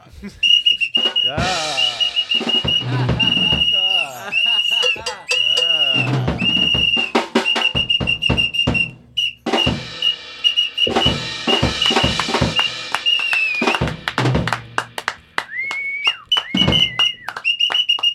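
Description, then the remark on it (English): A shrill, steady whistle tone sounds in repeated bursts, sliding in pitch near the end, loud, mixed with talking and clattering noise. “Is that too loud? Is it too loud? My whistle.”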